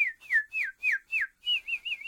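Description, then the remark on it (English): A person whistles a birdlike call: five falling, swooping chirps in a steady rhythm, then a quicker run of short warbling notes. Clear, with no talking. “Birds were chirping.”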